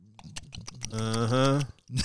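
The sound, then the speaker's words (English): Crisp crunching of a golden Oreo cookie and almonds being chewed, a quick run of dry cracks and clicks, followed by a drawn-out hummed voice and a little more crunching at the end. “And then you know, you take take a bite of the golden Oreo, and then you throw an almond in your mouth.”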